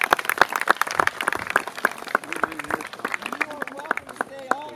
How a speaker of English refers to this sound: Thank you to everyone who brought tents, got the food, got everything together for this wonderful day. Wherever they are, let's applaud them for all of that.